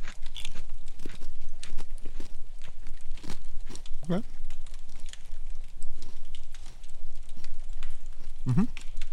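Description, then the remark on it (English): Crisp crunching as someone bites and chews a Snickerdoodle Oreo sandwich cookie, with a steady run of sharp, irregular crackles and a couple of brief vocal sounds mixed in. “Very crunchy. I'm going to eat it like I always eat an Oreo, which is, I split it.”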